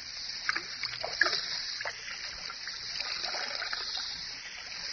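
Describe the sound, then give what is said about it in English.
Whiskey glugs and splashes out of a half-full bottle as most of it is poured out, a steady, continuous pour lasting several seconds, fairly loud, with small uneven spatters throughout and no voices. “Ah, there's the whiskey, still half full. Pour most of it out, so that it will look as though we had even more to drink.”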